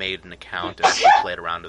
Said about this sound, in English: Oh, bless you. Yeah. She tried to dive out of the room before it happened, but she didn't quite make it.